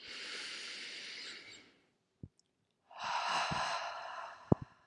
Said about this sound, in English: let's just take a few breaths. Will you take a breath in with me?